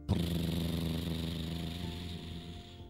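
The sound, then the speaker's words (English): A school bus full of kids rumbles steadily as it pulls away from school, a low, even drone with a faint whine rising in the last second. No one speaks. “As the school bus pulled away, all the kids' parents were waving goodbye.”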